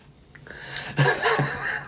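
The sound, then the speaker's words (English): Someone chews a crunchy snack, with moist crackling bites and a faint muffled hum of the voice mixed in, loudest in the second half. “These are really good. But they're terrible for talking. You need to have something crunchy and quick that you can just jump out and swallow.”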